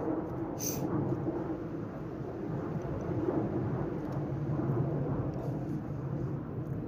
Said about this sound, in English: I'll wait for this plane to pass.